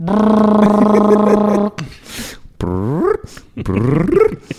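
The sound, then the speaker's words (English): A voice imitates a loud Spirit airplane engine getting up to cruise speed: a steady, buzzing low drone held for over a second, then a pause, followed by two loud whining glides that swoop up and down in pitch. “There are some loud planes. I feel like plane mufflers are very expensive, and Spirit's not shelling out for that.”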